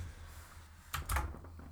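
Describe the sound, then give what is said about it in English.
A handful of sharp computer keyboard clicks, a quick burst of typing with a pause before one last keystroke, over a low steady background hum. No one speaks. “Typing.”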